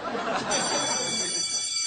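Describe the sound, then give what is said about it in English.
A school bell rings in a steady, continuous metallic clatter for about two seconds, bright and fairly loud, with a murmur of chatter and voices underneath. “Uh-oh, there's the bell. We better get going.”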